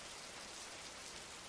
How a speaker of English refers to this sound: She leaves me then, alone on the grass of the hill, sitting beneath a rain so gentle and indistinct that you could almost convince yourself it was about to end.